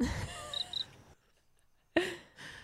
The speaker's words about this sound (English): John repeatedly searches for a cricket in the Murphy house. Where's that cricket sound, Steve?